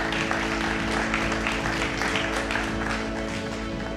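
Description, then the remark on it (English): An audience applauds steadily, many hands clapping in a dense, even wash that holds at the same strong level for about four seconds, with a faint low hum underneath. “Can you guys give her a round of applause?”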